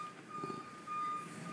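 A delivery truck's reversing beeper, from a linens delivery arriving across the street on a rainy morning, gives a thin, steady high-pitched tone, faintly on and off, over a low rumble of traffic and street noise.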